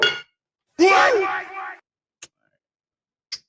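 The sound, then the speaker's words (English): Two short, bright glass clinks ring out about a second apart, following a burst of loud voices, like small shot glasses tapped together in a toast. “Take these shots real quick, man.”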